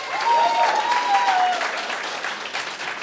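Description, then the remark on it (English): A crowd applauds and cheers steadily in support of Elizabeth Warren as the 2020 presidential candidate, with a dense, loud patter of clapping and a few high whistles or shouts rising above it early on before the noise eases slightly. “I'm going to ask our audience here, if you would like to see Elizabeth Warren be the candidate in 2020, applause, cheer, make some noise.”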